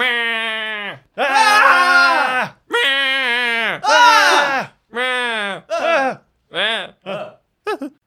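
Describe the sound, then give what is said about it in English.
A person's voice mimics the shrieking scream of a creature in a tabletop role-playing game after it has been tased, in a string of about eight loud, strained, pitch-bending bursts that grow shorter and choppier toward the end, with no words spoken. “And he stares at you and then screams.”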